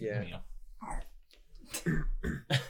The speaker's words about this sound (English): Yeah. Nice burp,